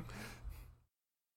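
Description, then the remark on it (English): A single sneeze: a breathy intake rising into a sharp, hissing burst that fades out in under a second, followed by silence. “Bless you.”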